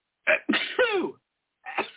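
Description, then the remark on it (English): A loud sneeze, a sharp breathy burst that breaks into a voiced, falling 'choo', followed a moment later by another short explosive burst. No one speaks. “Bless you”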